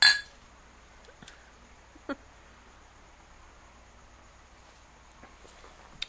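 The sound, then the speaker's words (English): Beer glasses clink together once in a toast, a bright ring at the very start that fades quickly, followed by a quiet stretch with a few faint taps and knocks. “So let's get into some smell, some taste, and how it sounds. Here you go. Cheers.”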